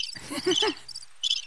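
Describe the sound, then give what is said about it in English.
Crickets chirp in short, high trilling bursts, a couple of pulsed chirps separated by brief pauses, clear, with a few lower rumbling tones at the start. “Crickets.”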